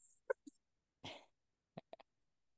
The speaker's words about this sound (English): And then I added some jalapeno peppers. But jalapenos. Yeah. But then when I go to sip, like breathe in and I end up coughing. So I don't know if that was the greatest of ideas.